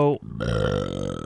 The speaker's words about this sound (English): well, that was a beautiful burp.